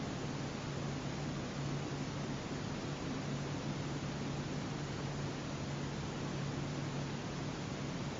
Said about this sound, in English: And paying attention to the sound, the air conditioning, or paying attention to sensations in the body.